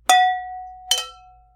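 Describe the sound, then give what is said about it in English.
Two bright clinks of wine glasses touching in a toast, a little under a second apart, each with a sharp strike followed by a clear, high ringing tone that slowly fades. No one speaks. “All right, here's to drinking some good wines. Yeah, cheers. Cheers.”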